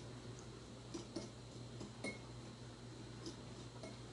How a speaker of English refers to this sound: I'm just kind of mixing up the butter here.